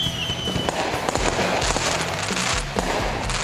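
Fireworks explode in a dense, continuous barrage of booms and sharp crackling pops, loud, with a thin whistle trailing through the opening moments.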